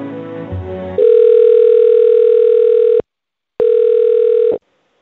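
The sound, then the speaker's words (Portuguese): A loud, steady telephone tone during a call to the Jehovah's Witnesses, as the caller is transferred to another department: one long mid-pitched beep of about two seconds, a brief pause, then a shorter beep, following a moment of muffled, jumbled line noise. “Certo, eu vou transferir o senhor para uma área que cuida disso, tá bom?”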